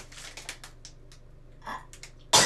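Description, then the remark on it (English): A sudden, loud, sharp sneeze bursts out at the very end in a bathroom, preceded by a series of soft, brief rustly puffs like quick sniffles or breaths. “Bless you!”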